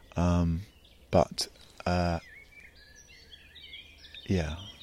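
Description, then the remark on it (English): Birds call by a pond in the early morning, just past dawn: three loud, harsh, drawn-out calls ring out, while faint high twittering songbirds chatter in between. “Yeah, I'm tuning into the birds, but also the sights on the water.”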